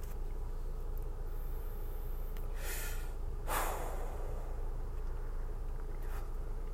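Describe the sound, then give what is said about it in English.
Two short, sharp sneezing bursts, the second a bit louder and harsher, cut through a steady low rumble. No one speaks. “Now that my sneezing's calmed down, I can talk.”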